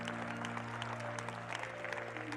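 A crowd at a church service applauds steadily, dense overlapping clapping at an even level for the whole stretch, with a low sustained hum running beneath it.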